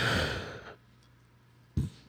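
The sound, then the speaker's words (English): A person lets out a long, breathy yawn in front of a microphone that trails off into near silence, followed by a brief second exhale or breath near the end. Fairly soft, with no talking. “Excuse me, God, I apologize for the yawning. There's no way I can cut all these yawns out.”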